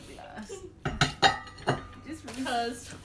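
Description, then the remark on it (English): Dishes, including plates, and glassware clink together in a few sharp, bright knocks and rattles, with scattered clatter and muffled voices in the background. “Then why is there so many plates but not that many bowls?”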